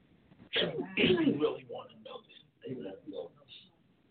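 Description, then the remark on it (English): A sudden, sharp sneeze from someone in the audience bursts out at moderate volume, followed shortly by a voice speaking. “Bless you.”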